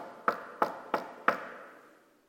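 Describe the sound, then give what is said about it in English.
Four firm knocks on a door in a steady, evenly spaced rhythm, each ringing briefly in the room before fading into silence. No voices accompany them. “When you hear this, you're wondering, do I have enough food to feed who's on the other side of the door?”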